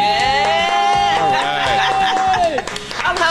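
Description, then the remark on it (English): A chef claps on request in the Cairo Radio studio, with no studio audience, for the Hot Stove Society Show: quick, steady hand claps repeat throughout, sharp and fairly loud, while a voice holds a long, high cheering tone over them before trailing off near the end. “But, Chef, can you clap for us?”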